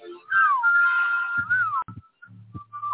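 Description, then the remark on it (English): Someone whistles a Christmas tune, holding long, wavering notes with gliding pitch bends. Short breaks follow, with softer low sounds underneath toward the end. “Yeah, it's a Christmas jam. Fire Nagy before it's too late for ….”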